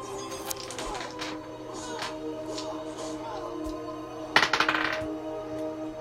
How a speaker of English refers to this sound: Can I borrow some dice? Yeah, take whatever you need. That's D20 right there.